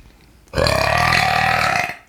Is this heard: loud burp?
yes